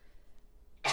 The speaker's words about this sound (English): Bless you? No, that was a cough.